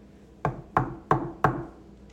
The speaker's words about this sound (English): Jesus was knocking, but were they listening? Were they going to open the door?